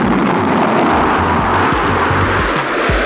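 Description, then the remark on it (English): A loud, steady roar of a futuristic air car blasting off with its protective shield switched on, with thick rushing noise and low engine tones rising and dipping throughout, continuous with no voices. “I hop in the air car, flip on the protective shield, and blast my butt out of there.”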